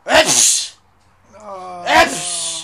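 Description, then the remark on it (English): A voice imitates two loud sneezes of a man in a Walmart who was sneezing and spitting into a napkin, each a sharp, breathy burst trailing into a hum. A short pause separates them, and a drawn-out voiced wind-up leads into the second. “And then he goes, and then like he's fucking spitting into this napkin, and then like coughing and fucking sneezing, like, fuck, dude.”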